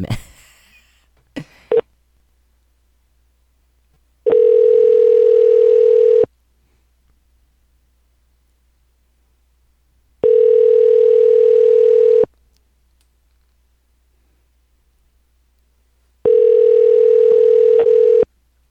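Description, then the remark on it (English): A phone line's ringback tone repeats three times, each steady buzzing ring lasting about two seconds with four-second silences between, preceded by a few faint clicks at the start. No one speaks. “Hopefully it doesn't just keep on ringing.”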